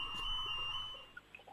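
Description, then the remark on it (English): An electronic alarm sounds a steady, shrill high-pitched tone for about a second, then breaks into a few short, faint chirps. No one speaks. “Please excuse the alarm there. I'll run and switch it off.”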